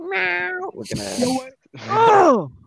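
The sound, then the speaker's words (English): A person meows at their cat, imitating it with three drawn-out, whiny meows in quick succession, fairly loud, the last one rising and then falling in pitch. “Stop fucking meowing at your cat in the middle of the podcast.”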